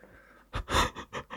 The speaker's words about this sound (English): You're right, you have a bit of a heavy breathing there.